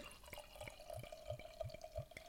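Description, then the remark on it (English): Beer being poured into a glass: a steady liquid trickle with a regular run of bright glugging pops about three times a second, with no voices. “I'll let you get some of that pour footage in there.”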